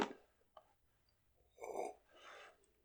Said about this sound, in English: Sips wine. I was like, that was the sassiest, the loudest sip.